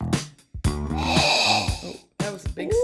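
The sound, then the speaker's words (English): Several loud nasal sniffs in quick succession, a long breathy inhale through the nose, then a brief pause before more snuffling breaths, as someone smells a drink during a blind tasting. “We have to find out the way we always do, starting with the sniff.”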